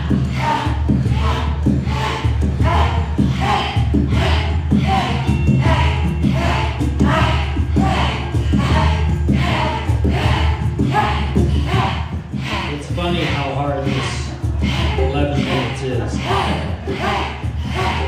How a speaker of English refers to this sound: Too fast, you can even slow it down a little. But a cannon breath is a powerful exhale where you're really blowing the breath out short, quick.